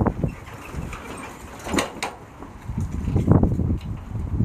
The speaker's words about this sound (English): Fuck, it's windy.